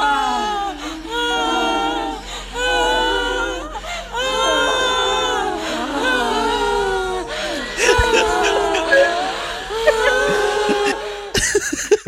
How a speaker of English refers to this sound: Here's scream number four.